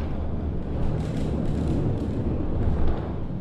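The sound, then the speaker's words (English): The rotating dome mechanism of a rooftop observatory, turning for a 360-degree view, gives off a steady, heavy mechanical rumble with a deep low-end drone and grinding texture, continuous and fairly loud throughout, with no voices. “He closed the door behind me, and then the noisy rotation of a 360-degree rooftop view began.”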